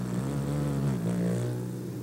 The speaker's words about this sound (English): The hummingbird is a marvel of agility and grace. The smallest birds, they take their name from the humming sound made by their rapid wing beats.